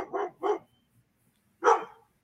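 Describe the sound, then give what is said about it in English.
A dog, scared by a child dressed in a Megan Halloween costume, barks three times: two quick barks close together, a short pause, then a louder, longer final bark. Clear, with no voices. “Even scaring a dog, it looks like.”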